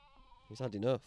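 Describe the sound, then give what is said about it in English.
A sheep lets out a loud, wavering bleat lasting about half a second, after a brief quiet lead-in with faint background hum. “Can you hear that? Everything's taking a turn for worse. Sheep.”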